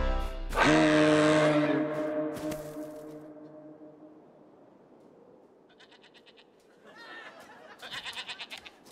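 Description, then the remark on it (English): A goat bleats: one long, loud, droning call, followed after a pause by two shorter, quavering, pulsed bleats. No one speaks. “Sorry, little goat.”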